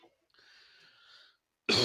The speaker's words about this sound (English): Are you smoking there? No, I'm not. Well, a well-placed cough.